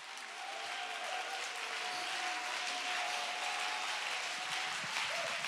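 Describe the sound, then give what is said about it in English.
A large audience claps together in a dense, steady wash of applause that holds at the same loudness for several seconds, with scattered raised voices shouting praise to God blending into the noise. “If you do, you ought to clap your hands and give God a shout of praise.”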